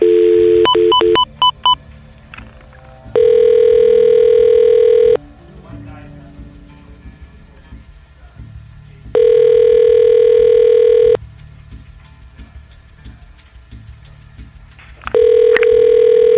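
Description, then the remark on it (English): A quick burst of touch-tone dialing beeps as a reporter calls a former undersheriff's phone number, then a telephone ringback tone repeating three times, each two-second ring separated by a few seconds of quiet line hiss. “Your call has been forwarded to an automated voice messaging system.”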